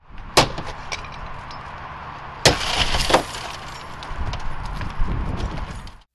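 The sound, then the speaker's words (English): A plainclothes police officer in Houston smashes a car's side window during a staged burglary demonstration: a sharp, loud crack, followed by a couple more hard impacts and scattered crunching and rattling of broken glass, with no voices. “It only took a plainclothes officer a matter of seconds to break the side window of a car, reach in, and quote-unquote steal two laptop bags from the back seat.”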